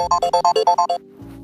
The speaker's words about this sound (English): Sorry, an alarm.